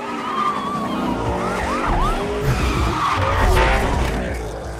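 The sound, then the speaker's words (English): A video game sound effect of a roaring car engine with tires squealing in a series of sharp, rising-and-falling skids. The sound is loud and continuous, with no voices. “What's the process for creating sounds that are intended to sound real, like the sound of a car in Need for Speed?”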